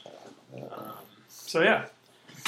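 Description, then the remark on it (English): A dog in a kitchen lets out one short, loud, wavering whine for attention, after a stretch of quiet, murmured talking in the background. “Now he's just whining for attention.”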